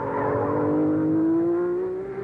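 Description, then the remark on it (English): A Formula One racing car engine roars loudly, its high buzzing pitch climbing steadily as it accelerates along the track during the Questor Grand Prix, with no voices over it. “Chris Amon is very slow coming through, and at turn 15, Mark Donahue sneaks by.”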